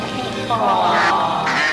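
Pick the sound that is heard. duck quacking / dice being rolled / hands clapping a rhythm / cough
duck quacking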